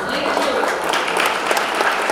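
Steady, dense applause from a large crowd, many hands clapping at once in a continuous, fairly loud wash of sound with no pauses or talking.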